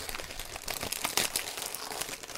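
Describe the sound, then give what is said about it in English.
Steady crinkling and rustling of shiny, hard-to-rip gift wrap being worked and torn open around a long rectangular present, with sharp papery crackles over about two seconds and no voices. “This is that shiny paper that's really hard to rip. It is like... impossible to rip. I'm going to have to go for the tape.”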